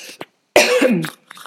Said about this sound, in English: Sorry, I have a bit of a cough.